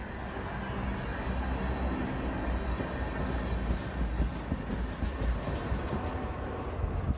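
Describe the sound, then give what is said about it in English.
A train rolls steadily past on the tracks without stopping or slowing, despite protesters on the tracks in Mohawk territory. A loud, continuous low rumble with faint rhythmic clatter of wheels, no voices. “So as you folks just saw, that was, despite there being warriors on the tracks, the train just rolled right through. Did not stop, did not attempt to stop.”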